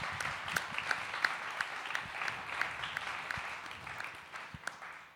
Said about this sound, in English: Come on, give God a round of applause.